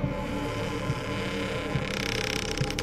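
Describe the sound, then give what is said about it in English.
A door creaks slowly open wide with a dry, ratcheting groan that builds toward the end, set against a steady low hum with faint throbbing pulses underneath. “He reached out his arm, handed me a pistol, and opened the door wide for me.”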